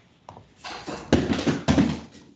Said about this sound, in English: Who fell over? Just fell out of his chair.